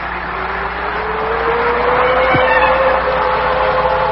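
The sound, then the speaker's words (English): A car drives steadily along the road, its engine humming over a continuous rush of tyre and road noise, the pitch rising slightly as it picks up speed. No one speaks. “With every mile, the car brought me closer to reunion with someone who no longer existed.”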